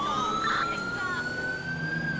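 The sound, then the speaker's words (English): A police car siren wails steadily during a pursuit westbound on Del Perro Boulevard at 80, its rising tone sliding upward over a constant rumble of engine and road noise, loud throughout. “Get my siren going.”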